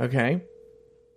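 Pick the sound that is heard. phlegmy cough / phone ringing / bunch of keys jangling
phone ringing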